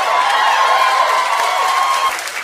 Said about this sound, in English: That applause lasted longer than Tom Brady's retirement.